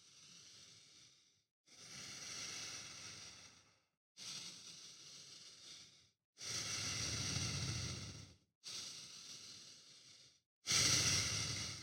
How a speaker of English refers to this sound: The only thing that I want you to focus on is that your breathing is relaxed. You're inhaling and you're exhaling long, deep, and without any interruption. Just fluently in and out and in and out like this.